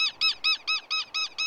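Southern lapwing calls while defending its nest against an intruder: seven sharp, strident notes repeated in a quick, steady rhythm, loud, with no voices around them.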